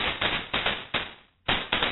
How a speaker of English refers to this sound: Yeah, I've got some fireworks. Does it sound like fireworks to you